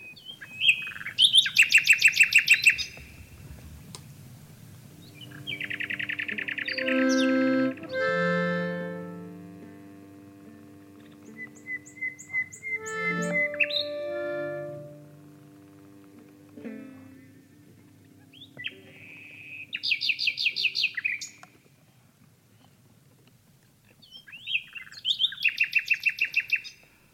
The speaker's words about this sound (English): Singing with Nightingales there.